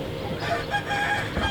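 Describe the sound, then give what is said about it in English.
Nearby chickens squabble and cluck continuously while a rooster crows, with the steady low mechanical buzz of two solar-powered hydro panels, machines drawing moisture from the air for water in Allensworth, running underneath the whole short stretch. “There are two solar panels a few feet away from the spigot, and you can hear their mechanical buzz beneath the squabbling of nearby chickens.”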